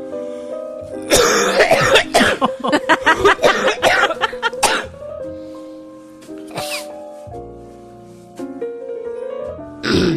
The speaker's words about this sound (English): That's because I'm sick. I'm not super sick, but I am getting over the flu and I have a bit of a cough. Let me see if I can get one up for you.